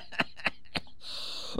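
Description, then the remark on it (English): A few short, sharp coughs spaced apart, moderately loud, followed by a brief hissy stretch and one more rough burst at the end. “You fucking laugh too much. Now you're going to cough.”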